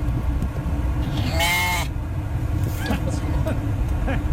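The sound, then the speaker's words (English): A sheep riding in a truck stuck in traffic lets out one loud, wavering bleat, followed by a few shorter, fainter bleats, all over a steady low rumble of an idling vehicle and traffic. “My wife driving home with a couple of sheep in her truck, stuck in traffic.”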